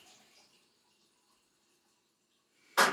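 Near-silence with a faint rustle at the start, then an abrupt, loud rush of water from a tap bursts in as someone gets water, and keeps running at the very end, with no one speaking.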